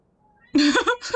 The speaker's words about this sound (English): Is the cat in the background? Can you guys all hear that? Oh yeah, that's loud AF.